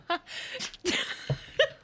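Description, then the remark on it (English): A dog, Daisy, sneezes in a quick run of short, sharp, breathy bursts, four or five huffs spread over about two seconds, moderately quiet with no voices. “Or sneezing, that was her.”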